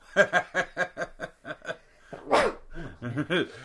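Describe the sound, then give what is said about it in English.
A run of rhythmic snickering laughter, then one sharp, loud, breathy sneeze bursts out, followed by a few brief voiced sounds. “Bless you. Thank you.”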